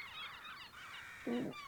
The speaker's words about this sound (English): Those seagulls that fly above us, they were once mice.